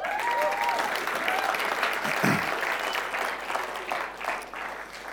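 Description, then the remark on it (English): An audience claps steadily for people who have just been baptized, the dense applause lasting the whole stretch with a few faint murmuring voices beneath it. “And let me, before I read the scriptures, let me just say that congratulations to those who have been baptized. May the Lord bless you and watch over you. Yep, give them a clap.”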